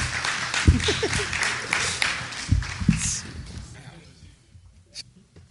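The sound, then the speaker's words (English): An audience applauds the Circle City Ghostbusters after a world premiere: a dense wash of clapping mixed with crowd voices for several seconds, then the noise thins and fades into near quiet. “All right, how about a round of applause for the Circle City Ghostbusters?”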